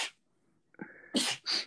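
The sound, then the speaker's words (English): A quick intake of breath followed by two sharp, breathy sneeze bursts in close succession, loud, with no talking. “So bless you.”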